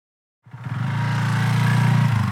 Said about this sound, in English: I wasn't expecting you to pull up on a motorcycle. I'm not sure why, but...